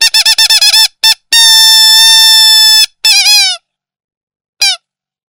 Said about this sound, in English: There. It sounds like you're vivisecting a toy squeaky duck.